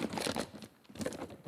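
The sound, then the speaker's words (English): Crinkling and rustling of paper being handled, two bursts of crisp crackling separated by a brief lull, fairly quiet with no talking. “In fact, I've just left that piece of paper.”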